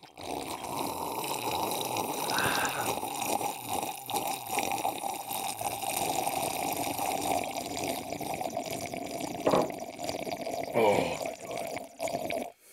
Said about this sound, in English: But first, pour me a brown, could you? Yeah, I got you.